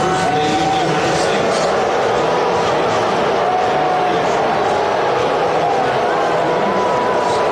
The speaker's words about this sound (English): Every time the president is shown on screen, the crowd boos. And then they began chanting, "Lock him up, lock him up."